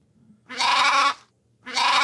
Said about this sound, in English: This is the sound a sheep makes.